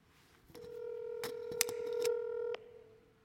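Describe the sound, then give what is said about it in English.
Telephone dialing tones as someone makes a phone call: a steady electronic beep holds for about two seconds while several sharp keypress clicks land over it, fairly quiet, with no one talking. “I got to make a phone call here.”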